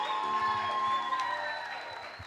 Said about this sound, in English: A round of applause. Now, when these are the new new couples or couple. Come on, let's give them a round of applause again.